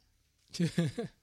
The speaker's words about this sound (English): And that was the sound of a baby falling asleep.